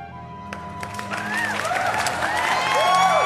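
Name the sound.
crowd cheering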